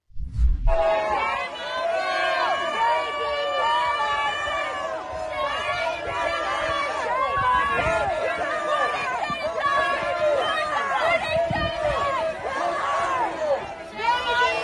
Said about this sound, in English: And here are the protesters screaming at her.